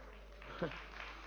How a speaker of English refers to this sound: Oh yes, give God a clap of hands.